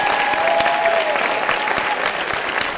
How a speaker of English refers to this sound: If you are clapping for Jesus, clap well. I don't know if you are.